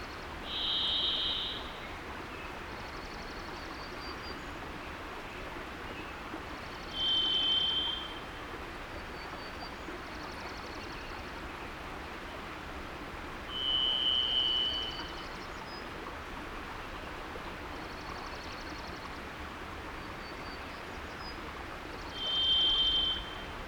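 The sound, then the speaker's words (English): A varied thrush gives four long, eerie buzzing whistles at shifting pitches, each separated by several seconds of pause, clear over the steady rush of a mountain brook, on a snowy hillside in dense Pacific Northwest forest. “Slogging up the hill through the snow, flanked by a rushing mountain brook, I become aware of eerie buzzing whistles, the calling card of a varied thrush.”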